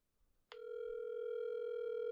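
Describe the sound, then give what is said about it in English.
After a brief quiet moment, a telephone line tone switches on abruptly and holds steady and loud, a continuous electronic hum with no voices over it, as a call is placed to Joe's Dry Dock Services in Florida. “I think you cut the phone call out of the other one, didn't you?”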